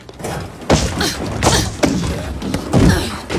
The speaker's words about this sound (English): Okay, and that's number six. Shoes. She just crashed into the doors of the elevator and went down for number six time. We got a comic book sound effect there when she threw her shoe. We sure did.